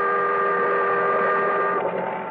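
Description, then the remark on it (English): The siren of a boat passing a few yards away in fog on San Francisco Bay sounds one long, loud, steady warning wail, a sustained droning tone with layered harmonics that holds for the whole moment and fades slightly at the end. No one speaks. “The boat siren, crying its warning, drowned out my shouts.”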